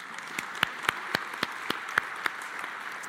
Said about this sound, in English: Yeah. You can clap that if you want.